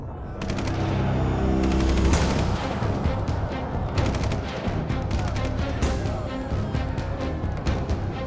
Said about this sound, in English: They came suddenly, ripping open the quiet with the sound of gunfire. Soldiers for Uganda's National Resistance Army were everywhere.